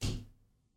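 A single sharp slap of a hand on a desk, loud, with a quick thump that fades out over a fraction of a second. No voices.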